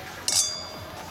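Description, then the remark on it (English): A single bright clink of wine glasses touching in a toast, with a crisp high ring that lingers and fades over about a second, clear against quiet room tone. “Well, cheers to finding someone you vibe with. Cheers.”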